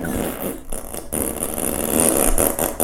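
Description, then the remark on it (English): A loud Disney fart sound effect: a sustained, raspy, sputtering blast with a buzzy low rumble and rough flutter, running for about three seconds with no talking over it. “But she wanted to, she's like, you should really just play some fart sounds.”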